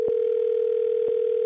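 A telephone dial tone on an outgoing call: one steady, unbroken mid-low tone holding at a constant level, marked by two brief soft clicks about a second apart. No voices.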